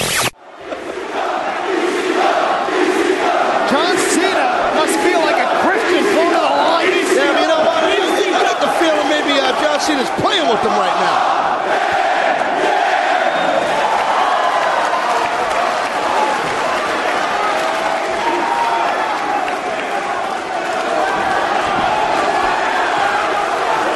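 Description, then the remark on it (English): A large, hostile wrestling arena crowd at One Night Stand roars and chants continuously during John Cena's match against Rob Van Dam, throwing toilet paper at Cena; a dense wall of voices stays loud throughout, with a commentator's voice speaking briefly over the din. “Enjoy the match. Enjoy the crowd.”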